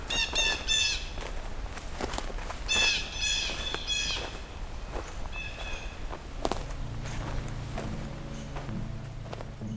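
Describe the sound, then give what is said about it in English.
Blue jays give two bursts of harsh, repeated squawking calls in woodland under a spotty canopy, while footsteps crunch steadily and a low droning hum rises near the end. “Lots more blue jays.”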